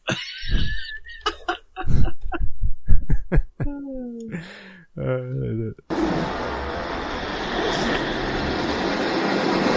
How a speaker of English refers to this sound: That is the worst sounding whoosh. Wow. That's the worst sounding whoosh.